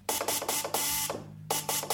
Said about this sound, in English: This is what radio sounded like when Mills first started, the dots and dashes of Morse code. That's the letter V, which you use for test purposes.